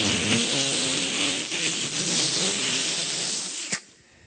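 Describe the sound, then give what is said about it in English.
A voice mimics a vacuum cleaner, like a Dyson or a 700-pound Hoover, with a steady, loud, breathy hiss and a low rumbling undertone, held for nearly four seconds before cutting off with a brief click. “And, you know, a little drop of affirmation comes and suddenly we're like, a Dyson super sucker, you know, it's the 700-pound Hoover.”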